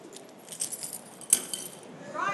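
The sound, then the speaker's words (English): Car keys jangle and clink in a short metallic rattle, with one sharper chink midway, moderately quiet, as a man hands them over to another person. “He gonna give me his car keys.”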